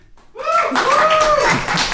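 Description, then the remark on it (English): An audience voting by applause gives a short burst of scattered clapping, light and uneven, with some laughter and voices mixed in over the clapping for about a second and a half. “They almost didn't clap for either.”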